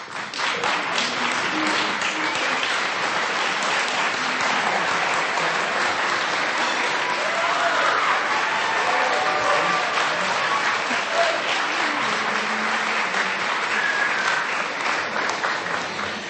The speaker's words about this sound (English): We have some outstanding teachers of students who are visually impaired in the audience tonight, and I would like for them to just quickly stand and be recognized with a round of applause.